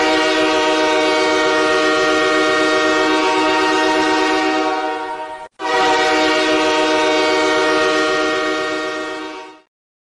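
A loud train horn sounds in two long sustained blasts separated by a brief break, with a low rumbling of the train rolling on the rails underneath. No one speaks.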